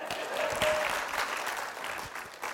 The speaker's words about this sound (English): But you can clap for that.